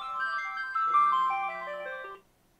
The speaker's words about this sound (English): Sorry, phone rang.